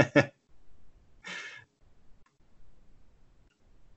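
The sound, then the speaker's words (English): A short breathy intake followed by a longer airy exhale, a yawn, then quiet background noise with faint low rumbles. “Sorry, yawned.”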